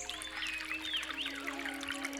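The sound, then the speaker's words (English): A stream trickles steadily and softly, a continuous babbling wash of water with small bright gurgles rising throughout, unbroken, with no voices. “knelt beside the stream, letting it flow into his cupped hands.”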